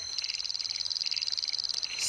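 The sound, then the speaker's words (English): Australian frog calls: a rapid, steady train of high-pitched calls pulses continuously, bright and insect-like, repeating many times per second against a quiet natural background, with no voices. “So this is an album of frog calls, etc., that had been put together by a bunch of scientists, and they've released it to sort of, I guess, get more awareness around some endangered species”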